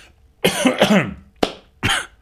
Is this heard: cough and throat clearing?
yes